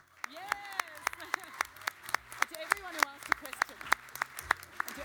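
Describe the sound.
An audience claps for about five seconds: sharp, steady claps that sound like a smallish group rather than a full roar, with voices calling out and chattering over the applause.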